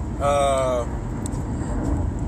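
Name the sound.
car interior driving noise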